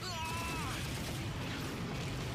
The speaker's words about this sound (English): Prepare to activate weaponry. Maybe not. Jeez, talk about artillery.